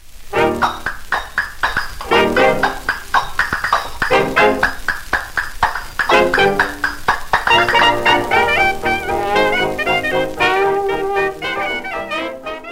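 A 1927 jazz record intro: hand cymbals clash crisply on a steady beat beneath bright, punchy brass phrases, with the horns growing busier and more sustained toward the end. No voices.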